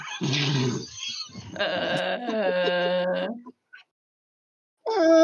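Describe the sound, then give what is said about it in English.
A person imitates a donkey's bray, loud rasping hee-haw calls running together for a few seconds, then a brief silence before another bray begins. “do you guys want to meet my donkey, Gamwise Samji?”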